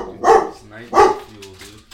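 dog barking

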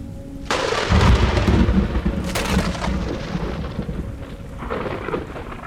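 thunderstorm with heavy rain

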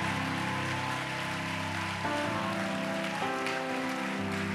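audience cheering

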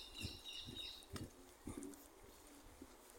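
bird singing

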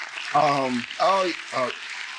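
applause

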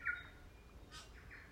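birds chirping

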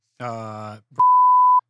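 censor bleep tone

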